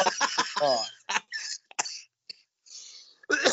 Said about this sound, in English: Oh, I made myself cough on that one.